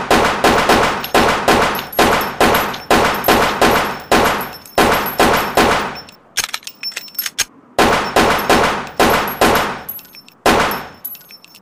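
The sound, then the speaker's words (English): Loud, rapid gunfire from a police officer's firearm: a long string of sharp shots fired in quick succession, a brief break with a few scattered cracks, then another fast volley that ends abruptly. “Son, if you do not put your hands up, I'll be forced to use this firearm to dispose of your threat.”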